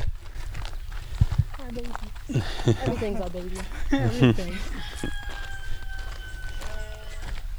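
A sheep bleats a few times in the middle, its wavering, quavering calls rising over a busy, noisy outdoor background with other animal sounds.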